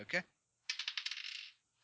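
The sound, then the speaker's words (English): A quick run of bright clattering clicks as dice are rolled for a climb check, tumbling and settling, follows a brief vocal sound and lasts under a second before fading. “Keep rolling my dice behind things.”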